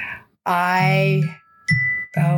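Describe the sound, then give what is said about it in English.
An electronic notification chime from a phone or computer: a bright, harmonically rich tone followed by a thin sustained ring, then a second shorter chime burst, loud and with no talking. “I forgot to also turn off my phone and my computer.”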